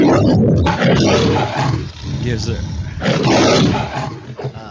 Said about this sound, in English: How about a little roar if we can? The lions are back.